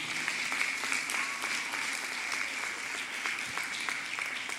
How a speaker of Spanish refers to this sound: Sí, dale un aplauso al Señor.